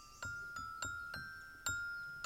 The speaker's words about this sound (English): And with a silver wand, he tapped the rocks. And on what might be called a lithophone, he made the most ethereal, ephemeral thing he could from his native geology. He made music.